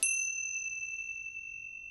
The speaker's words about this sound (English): That is one of those Tibetan chimes.